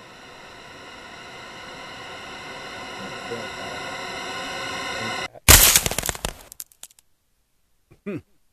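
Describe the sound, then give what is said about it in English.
A tense panic sweep sound effect: a noisy, tonal riser swells steadily for about five seconds, then cuts into a harsh crackling burst that fades quickly, followed by a brief faint blip. “Panic sweep or panic sweep. Number two.”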